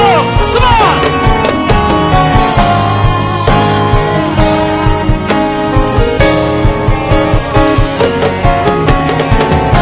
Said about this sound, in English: So ladies and gentlemen, I like the start of your hand clap. Why don't you take the hand clap to another level? Add a shout, you can add a bounce,